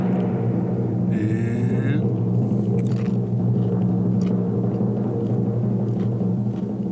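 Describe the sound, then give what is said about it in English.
Someone munches all-dressed Ruffles potato chips made in Canada, with scattered crisp crunches over a steady low rumbling hum; faint murmuring voices sit in the background. “He's nodding. He's chewing.”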